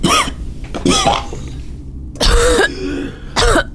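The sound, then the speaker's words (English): Several harsh coughs in irregular bursts from two characters who begin coughing after an hour of silence following a cure: two quick ones early, then a longer hacking cough and a final short one, with brief pauses of quieter breathing between. “And after an hour, Rihanna and Yargan begin coughing.”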